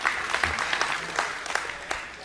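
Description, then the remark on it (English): A crowd applauds steadily, a dense wash of many hands clapping with scattered sharper claps standing out, holding at an even, moderate level throughout. “And it's okay to clap.”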